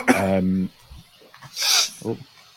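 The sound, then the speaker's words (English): A single sneeze: a drawn-out voiced intake followed a second later by a sharp, hissy burst of air, then a brief vocal sound trailing after. “Bless you”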